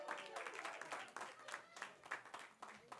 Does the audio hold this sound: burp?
no